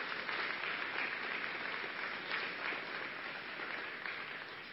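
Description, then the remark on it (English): A crowd claps steadily for several seconds, a dense, even wash of many hands with no single beat standing out, loud throughout and tapering slightly at the end. “Yeah, that's something to clap for.”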